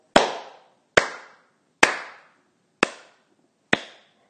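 A slow clap: five sharp, loud hand claps spaced evenly about a second apart, each crack ringing out briefly before the next. No voices are heard.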